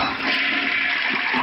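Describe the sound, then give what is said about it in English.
A toilet flushes with a loud, steady rush of water that stays constant throughout, no voices present. “If you're a telephone or a toilet coming out of the tree, it's probably one of them birds.”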